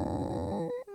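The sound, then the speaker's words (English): A person imitates a horse whinny with a short, gravelly vocal burst that rises in pitch at the end, about a second long. “Oh, your horse sounded you like a squeaky door.”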